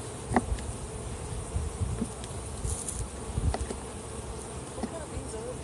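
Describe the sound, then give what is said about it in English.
A dense, steady hum of many honeybees buzzing around a hive, a continuous drone with occasional brief louder passes and soft clicks over the top. “They still have a lot of room on the outside, so I'm not worried about it. You know, a swarm area.”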